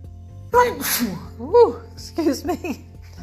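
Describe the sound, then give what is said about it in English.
A loud sneeze with a sharp breathy burst, followed by a few more voiced, halting gasps as if another sneeze is building. “Preparing for a sneeze.”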